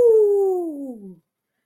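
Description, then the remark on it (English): A person howls like a coyote: a single loud, drawn-out note that slides steadily downward in pitch for about a second before cutting off into silence. “Howling Coyote.”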